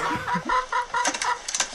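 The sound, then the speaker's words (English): A chicken named Fred, kept in a bucket, clucks in a quick series of short, nasal calls, repeating steadily with a few scratchy rustles mixed in, no voices present. “Why do you keep Fred in a bucket?”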